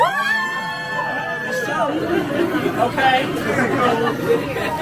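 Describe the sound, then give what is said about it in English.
An audience cheers together in answer to a call for a cheer from anyone who was there in 1992, opening with sustained high whoops and calls that dissolve into a steady, lively roar of many voices, fairly loud and continuing for several seconds. “Can I have a cheer from anybody who was here in 1992?”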